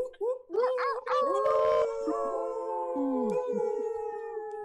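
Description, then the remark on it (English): Several people howl like wolves at once through unmuted microphones, overlapping voices rising and sliding in long wavering tones, loud, with a few yips and whoops mixed in. “And yeah, let's send some noise, make some wolf howls, do some animal like fairy noises, and send some love to all the people who are tuned in right now.”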